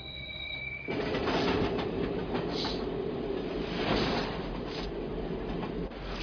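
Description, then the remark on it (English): A train rolls steadily along the rails, a continuous loud rumble with rattling wheels and faint squeals, starting abruptly after a brief quieter moment and holding steady throughout. “The train! It's from a movie.”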